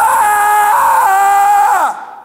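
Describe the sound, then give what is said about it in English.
A voice imitates the loud, strained screeching groan of a woman in labor, one sustained high wail held for nearly two seconds before it slides downward and trails off, alone. “No, it's gut-wrenching. It's loud. It's ugly. It's screeching.”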